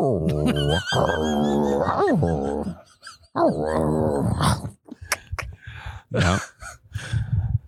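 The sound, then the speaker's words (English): A person growls and snarls like a dog sucking the marrow from a bone, in several strained, throaty, loud bursts, broken by short gasps and sputtering breaths before a final burst. “It was in my fridge the next day and I was like a dog. Sucking the marrow”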